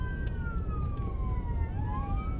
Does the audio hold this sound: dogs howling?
no